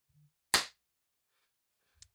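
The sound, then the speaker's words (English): A single loud, sharp hand clap cracks out and fades within a fraction of a second. A faint low thump comes just before it and a small click follows, with otherwise silence. “So, I'm just going to do a clap really quick. Just so I can line this up.”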